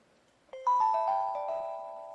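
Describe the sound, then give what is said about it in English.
A device's default waiting sound, played while it recognizes an SD card or builds a book: a soft electronic chime of several bell-like tones entering one after another, stacking into a sustained, slowly fading chord. No one speaks. “So when it's recognizing an SD card or building a book or something and it wants you to wait, it'll play a sound. Now, by default, it'll be this sound.”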